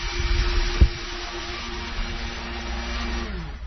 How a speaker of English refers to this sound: So here we have 12 ounces of Pepsi, some cranberries, and turkey. Making our own turkey lard concoction. Ah, so there you hear the blender in the back, and you know it's real.